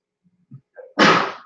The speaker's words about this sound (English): Bless you